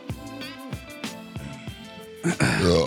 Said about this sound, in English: And we are back. Starting off with a burp. With a bang.